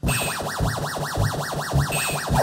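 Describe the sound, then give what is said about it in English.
The Space Invaders mothership sound, the 500-point ship going along the top of the screen: a rapid, looping electronic warble that sweeps up and down in pitch about five times a second, steady and continuous with no voices. “it's the mothership going along the top”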